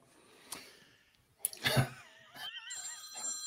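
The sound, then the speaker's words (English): A telephone rings with an incoming call, an electronic, warbling tone for about a second, loud, following a short burst of noise like a snort or breath. No one speaks. “Oh, we're getting phone calls.”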